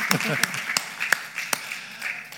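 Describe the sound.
A few sharp, scattered hand claps from an audience ring out at uneven intervals, about five or six in all, over a low murmur of voices.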